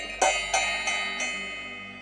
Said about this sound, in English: Before we do that, I'm going to go ahead and set our space. So starting by ringing our bell, setting the moment.